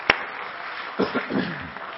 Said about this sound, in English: Let's clap our hands unto the Lord, everybody.